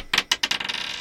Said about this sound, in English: Give me a damage roll. Give me a D8. That one. There's too many. For the folks at home, we're not that slow. There's like 15 dice on the table.